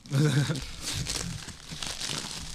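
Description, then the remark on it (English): A plastic sandwich wrapper crinkles and crackles as it is pulled open, steady for about two seconds, right after a brief voiced sound. “Just open the right one.”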